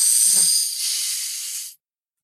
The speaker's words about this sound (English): So what's the deepest breath you could take? Like the deepest inhale?